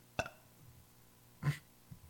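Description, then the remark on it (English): A short burp breaks the quiet, preceded by a brief sharp gulp-like sound and followed by a couple of faint low murmurs. No speech is heard. “It's been spoiled if you stick around past when I burp.”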